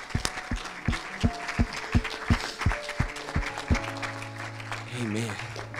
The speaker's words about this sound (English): Can we clap our hands to Jesus one more time?